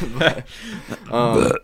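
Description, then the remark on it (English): A loud burp rumbles right into the microphone, a drawn-out guttural belch following a couple of shorter throaty vocal sounds, with no one speaking clearly around it. “I was, excuse me, by the way, I just burped in the microphone.”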